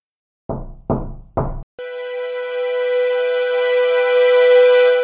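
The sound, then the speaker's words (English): Three firm, evenly spaced knocks on a door, loud, followed immediately by a sustained bright musical tone that swells and holds to the end. “Come in.”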